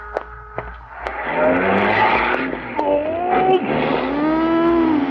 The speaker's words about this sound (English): A lot of traffic today. Four cars and a bicycle.